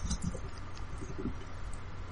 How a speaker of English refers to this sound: There is a flutter as you say, summon the finch. Oh, shit. And a small finch flies down from the branches above and lands on your shoulder.